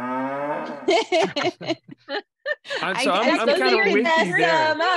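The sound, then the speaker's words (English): A low, drawn-out cow moo sounds at the start, followed by choppy voices and then a stretch of lively, overlapping chatter. “You know, we can hear cows and things.”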